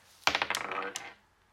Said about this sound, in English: Someone roll a dice. Roll a dice.